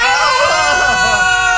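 People scream into the void one last time, just for fun: loud, sustained, high-pitched and strained screaming from more than one voice, overlapping in one continuous yell that holds for over a second without a break.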